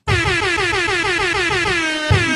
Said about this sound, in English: Been waiting for that buzzer. Been waiting for that buzzer. 30 minutes.